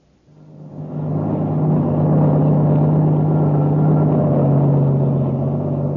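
A heavy truck engine fades in over the first second, then holds a steady, loud droning rumble with a low hum as the truck drives along a highway at constant speed, the only vehicle on it for miles.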